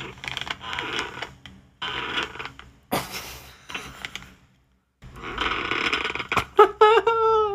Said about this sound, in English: Bed creak sound. Wow, that was like the first fucking hit. Mattress creaking sound. Maybe this is it.